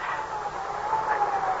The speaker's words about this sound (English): It's an ambulance, not a speed cop.